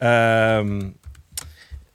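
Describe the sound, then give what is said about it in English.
A sustained humming voice fades out, followed by a short burst of scattered typing on a computer keyboard, irregular clicks and taps with one sharper keystroke. “Hang on. I'm typing here.”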